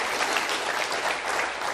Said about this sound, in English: your staff loves you, you got a great pastor and family and staff, and why don't you just give them a big round of applause this morning.